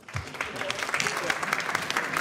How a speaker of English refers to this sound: let's get a big round of applause for our winner's roommate and our runner-up, Max Silver